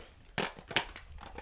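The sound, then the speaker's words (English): Dry rustling and crinkling as a handful of trading cards is grabbed from a stack, with a few quick scraping bursts over about a second and a half. “He's going to grab a handful of cards.”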